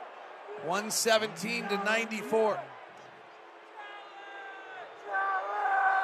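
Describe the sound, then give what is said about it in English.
A large arena crowd at a Jazz versus Blazers basketball game in Portland shouts and yells together in loud, rising bursts, wanting a challenge of a call, then the noise settles into a sustained, droning roar that swells again toward the end. “Crowd wants him to challenge.”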